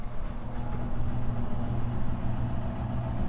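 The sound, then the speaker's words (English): A washing machine runs with a steady, low mechanical hum and droning tones, holding an even level throughout with no voices. “That is the washing machine.”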